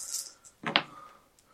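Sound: dice rolling on table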